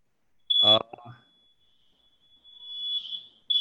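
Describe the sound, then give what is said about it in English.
A building fire alarm, set off by a smoking laundry machine on the 5th floor, sounds a steady, piercing high-pitched tone throughout, swelling louder toward the end, with a brief loud burst of a voice-like sound near the start. “Fire alarm part 3. Fire alarm off.”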